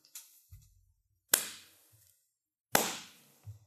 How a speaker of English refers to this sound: Wait, you don't have to clap. I'll let the podcast listeners applaud.